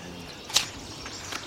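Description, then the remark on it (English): A northern water thrush, a warbler, sings a short burst: one sharp, high, bright note followed a moment later by a fainter second note over a steady low hiss, with no talking. “That's closer now. A northern water thrush.”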